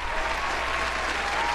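A burst of canned applause from a soundboard button: steady, dense clapping from a crowd that fills the whole moment at an even level, with no voices over it.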